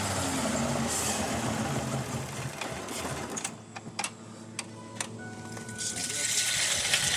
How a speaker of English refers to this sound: Like after he throws the valve to send hydrogen into the engine, it runs for a little while, but then he has to shut it down.